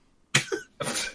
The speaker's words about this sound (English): He starts coughing up a storm over there.